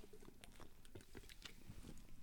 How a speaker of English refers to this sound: I'm gonna take a little sip here. Yep. Just for Charlie. For Charlie.